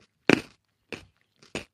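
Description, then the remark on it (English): A loud crunchy bite into a raw carrot eaten with a spicy salt-and-spice seasoning, followed by two quieter crunching chews spaced about half a second apart, with no talking. “I'm going to try it with a carrot.”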